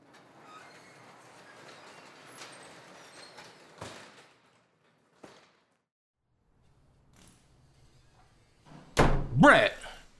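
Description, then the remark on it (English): Against a murmur of background noise, a couple of dull thuds land, then a loud bang near the end, like a door being slammed hard. Voices can be heard faintly. “If you broke the door, I swear to God.”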